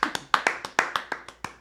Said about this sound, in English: Let's give it up for the real number 50 that we're all thinking about. Round of applause. Red Sox legend, Lou Merlone.